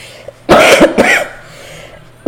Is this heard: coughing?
yes